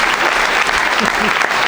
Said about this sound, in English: Thank you. That is the end of that bit. Thank you. You are correct to applaud.